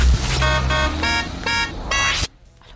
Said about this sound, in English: All you're going to do is listen out for our FM 104 Renault beep, which goes like this.